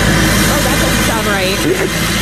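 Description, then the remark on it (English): A car engine with a modified exhaust that blows out the side of its fenders rumbles loudly and steadily, a deep throaty drone that barely changes, with faint voices mixed in underneath. “This guy modified his exhaust to blow out the side of his fenders.”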